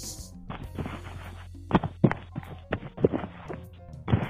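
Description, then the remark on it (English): A penis slapping against a phone during a call: roughly five sharp, irregular smacks, fairly loud and muffled, over a steady low hum and rustling handling noise. “Slapping that little baby toe of a cock on the phone.”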